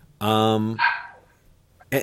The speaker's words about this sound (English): Or like one of the dogs just did. Keep talking. Yes. They're just going to keep barking. It's fine.